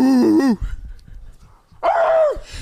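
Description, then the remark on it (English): A small dog lets out two sharp, high-pitched barks with a low rumbling growl in between, fairly loud, no people talking. “Little rabid dog in the back.”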